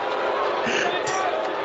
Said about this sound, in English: Savio Vega being introduced to a chorus of boos for this non-sanctioned matchup. They're booing him so over.